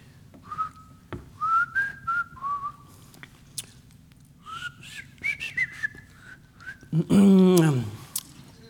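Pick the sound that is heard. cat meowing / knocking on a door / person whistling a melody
person whistling a melody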